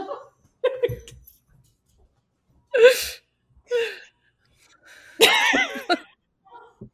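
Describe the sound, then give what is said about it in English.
Dogs bark in a handful of sharp, irregular bursts separated by quiet gaps, with a longer, louder volley near the end, with no talking over them. “Bark, bark. Yeah. I'm going to take the dogs out.”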